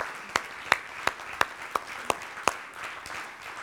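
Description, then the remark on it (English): A brief round of applause: a steady run of seven sharp, evenly spaced claps over a soft wash of scattered clapping, which trails off into a faint hiss. No one speaks. “Well, why don't you give them a round of applause?”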